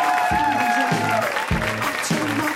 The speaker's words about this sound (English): And this is where you clap. Thank you very much, Meltdown. Thank you, Nerdist.